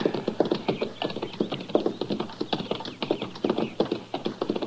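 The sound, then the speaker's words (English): Horses' hooves clip-clop steadily on hard ground, a busy overlapping rhythm of many quick hoof strikes, moderately loud, with no voices. “Now, that's horses down there, Chester.”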